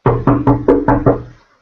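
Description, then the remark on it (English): Two little kids outside a house knock on the window to get attention: six quick, evenly spaced, fairly loud knocks in a steady rhythm, each with a short ringing resonance before the sound fades into quiet. “I have two little kids who are, I'm in a room with the door closed, and they've actually walked outside of the house, knocking on the window to get my attention.”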